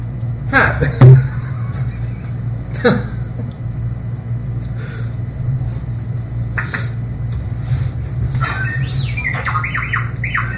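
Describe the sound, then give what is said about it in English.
An R2 unit droid chatters in quick, high-pitched warbling beeps and chirps, the busiest run near the end, over a steady low electrical hum with a few scattered clunks earlier. “This is the most long-winded R2 unit ever.”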